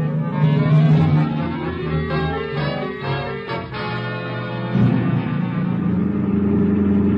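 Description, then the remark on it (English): A car engine hums steadily as it drives through a city toward a radio station, its low rumble shifting in pitch as it slows and then picks up again, with no voices over it. “Okay, pull up in front of the building.”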